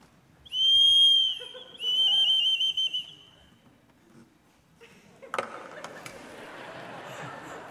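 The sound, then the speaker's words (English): A shrill whistle made to replicate a bird's mating call sounds in two bursts, a sustained pure note and then a warbling, trilling phrase, followed by quiet and some rustling handling noise. “It's supposed to replicate a bird sound, a mating call.”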